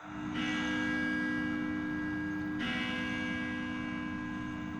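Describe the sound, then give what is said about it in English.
Church bells ring out with two heavy strikes a couple of seconds apart, each leaving a rich, humming tone that lingers and overlaps the next. No one speaks. “There ought to be a law against those bells.”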